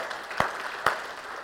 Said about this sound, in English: Let's give them a big round of applause this morning.